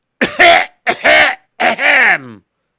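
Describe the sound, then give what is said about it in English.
Three harsh coughs come at an even pace, each with a raspy, throaty tail. The last one trails off into a falling groan. No talking. “Hey, you're coughing all over the place.”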